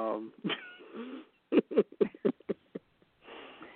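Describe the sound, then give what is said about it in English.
A person's voice mimics a cat, making a short series of rapid, choppy meow-like bursts, bracketed by brief vocal sounds at the start and end. “Okay, you can be the cat.”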